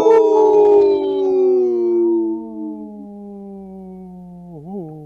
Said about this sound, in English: supported by Howling for Wolves, protecting wolves for future generations. Howl!